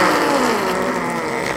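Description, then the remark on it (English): A voice makes a sustained, buzzing raspberry sound imitating a fart, steady for over a second, with a rough, motor-like rumble. “No, see, you gotta do it so it sounds like an actual fart.”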